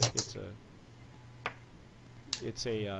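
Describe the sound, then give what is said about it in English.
Sharp clicks and a crackle as a screw cap is twisted off a heavy, substantial bottle, with a short pause between bursts, then a voice briefly sounds at the end. “It's a screw pull. Top.”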